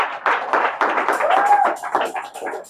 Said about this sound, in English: Are you clapping for the Lord? Just clap for the Lord.